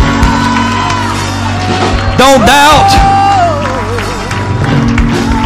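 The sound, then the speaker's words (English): A crowd claps and gives a loud shout to God, with whoops and cheering voices rising over a steady musical backdrop, while a voice calls out briefly above the noise. “Come on, clap your hands and give a shout to God.”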